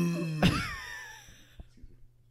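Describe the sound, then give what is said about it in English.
A single throaty burp erupts with a sudden onset, its voiced tone wavering and fading over about a second before near silence. “There's a moment of silence after that burp.”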